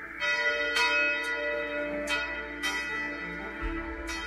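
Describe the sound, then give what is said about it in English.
Church bells ring out in a steady peal, several bright strikes overlapping with long, humming resonance that hangs in the air, fairly loud with no voices present. “We enter in the tavern from before, having just heard the bells.”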